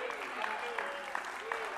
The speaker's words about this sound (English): Oh, come on, clap your hands unto the Lord right now. Hallelujah.